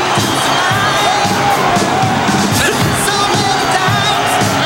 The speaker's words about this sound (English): And listen to this crowd. It's very good. This place has gone wild.